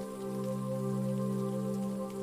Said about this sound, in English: Everybody seems even more grateful to be sat in the snug armchairs, enjoying a tasty treat while the rain patters on the roof.